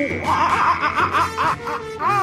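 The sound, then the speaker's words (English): A man imitates a monkey with a rapid string of high, chattering hoots and whoops, loud and excited, rising and falling in pitch over about two seconds, as his Football Friday monkey noise on the 1080 The Fan radio show. “doing his Football Friday monkey noise.”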